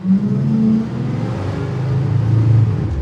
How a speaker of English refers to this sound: If you were recording someone's voice and a city bus drove by, there would be a super, super low rumble that we don't want to hear.